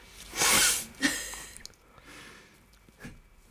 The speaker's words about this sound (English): I really need to blow my nose. I had to like sneeze for a while. I was trying to hold it.